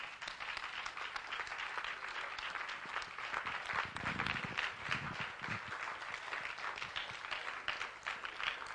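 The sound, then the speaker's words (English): An audience at a church service clapping hands unto the Lord in steady, sustained applause, a dense wash of many claps filling the room without pause, with no voices standing out. “Won't you clap your hands unto the Lord?”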